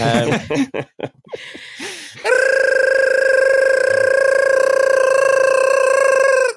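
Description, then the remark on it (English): A gibberish alarm sound effect: a burst of squeaky, high-pitched vocal babble and chattering gives way to a loud, steady electronic alarm tone that holds one pitch for several seconds before cutting off. “that's the gibberish alarm, which is getting more high-pitched every week.”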